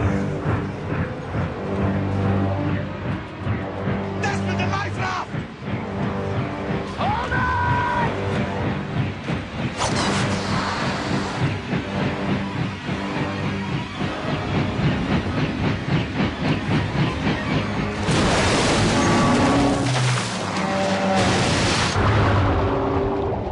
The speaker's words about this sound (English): All drama is driven by tension. So after surviving a plane crash, why not throw in a helicopter crash into it all as well?